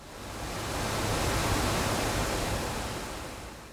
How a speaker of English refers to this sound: An iconic waterfall flows next to the mill into Spring Creek, not far from Bryant Creek it meets up with.